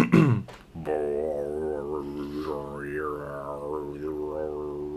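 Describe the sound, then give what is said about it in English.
A didgeridoo plays a steady, low buzzing drone for about four seconds after a brief rough start, its overtones swelling and warbling in a wah-like pattern while the pitch stays fixed. “learn how to play the didgeridoo since our last podcast”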